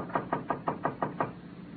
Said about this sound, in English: She knocked on the door of room 12.